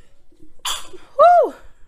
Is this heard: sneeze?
yes